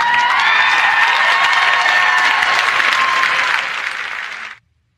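A crowd cheers and applauds loudly and steadily, with high whoops and shouts over dense clapping, fading slightly before cutting off abruptly near the end.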